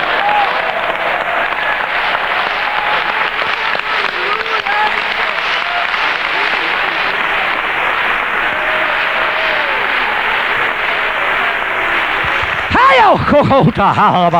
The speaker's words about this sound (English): But if you believe that God's got the best saved for the last, I want you to jump up and clap your hands together and say, praise the Lord.